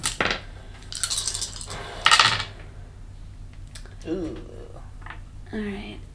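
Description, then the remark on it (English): A few bursts of small hard dice clattering and rattling across a tabletop as they are rolled and rerolled, followed by brief voices talking. “I'm gonna give you a dice to reroll.”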